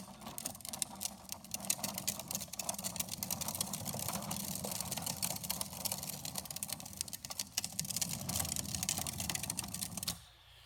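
A child's small ride-on toy car with a young boy aboard whirs and rattles steadily for about ten seconds, a continuous buzzing motor and rolling noise that cuts off abruptly at the end.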